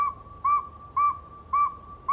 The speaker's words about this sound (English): This nighttime whistler's a northern saw-whet owl. We like to think that owls only hoot, but these sound a lot like human whistles and are easy to copy.